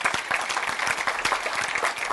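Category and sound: crowd, audience clapping hands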